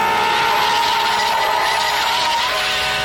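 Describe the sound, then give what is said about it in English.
A semi-truck roars by, its loud, steady engine drone and rushing noise filling the whole stretch, with a high whining tone wavering on top and no one speaking, in a scene from the sitcom Telehell where it bears down on two characters. “Just then, while making that nightmare of a daydream, the hopes for the show rise a little as a semi-truck seems eager to run both Shore and his friend down.”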